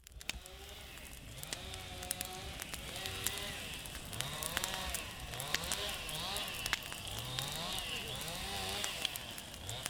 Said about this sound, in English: Back at the Wild Oaks Preserve, Zach and Phil are busy clearing brush and branches with chainsaws, while a truly merry donut-fueled band of volunteers pulls the downed wood into burn piles.